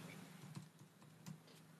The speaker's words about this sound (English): Are you typing on the chat at the same time? Damn. The multitasking is out of this world.